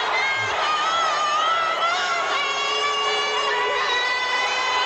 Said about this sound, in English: Yeah, people are booing her. That's pretty much how America feels right now.